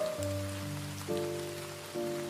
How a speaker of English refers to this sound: Rain, noun. Number one, water falling to earth in drops.